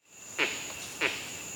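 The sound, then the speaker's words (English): A male monkey's kek alarm call, given on seeing a leopard and recorded by researchers: two short, harsh barks about half a second apart, loud over a steady, high, insect-like hum. “And that's when we were able to record the kek. Here it is.”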